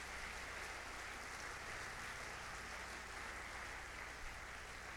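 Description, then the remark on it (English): An audience claps steadily for several seconds during a preacher's sermon, clapping their hands unto the Lord, a dense, continuous wash of many hands at once with no voices rising above it and no clear break in the applause. “Clap your hands unto the Lord if you will.”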